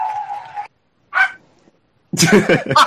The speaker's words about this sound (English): The dog. Totally punctuated. That's what I can say. The dog loves me.